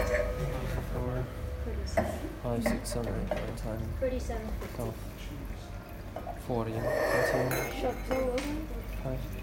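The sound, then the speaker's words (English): Glasses clink and tap together repeatedly as drinks from a shared bottle are passed around, bright little chimes scattered through steady, overlapping conversation from several people. “Okay, everyone grab a glass around me.”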